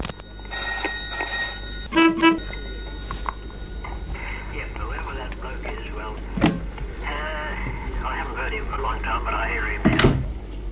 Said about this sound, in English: Oh, the phone. Hang on, we'll just... Oh, dear.